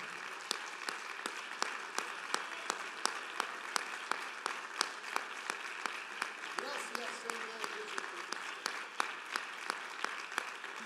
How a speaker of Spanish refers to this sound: Antes de que se siente, denle un fuerte aplauso, Señor, hermanos, con todo corazón.